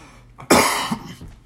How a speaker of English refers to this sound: I got dog hair and I got a cough.